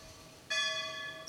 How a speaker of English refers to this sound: the bell calls us to meals three times a day.